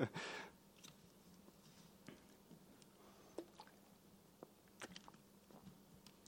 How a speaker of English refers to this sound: So just before I read this very long scripture, I just need some water, sorry.